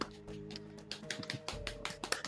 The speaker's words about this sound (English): I'll clap for both of us.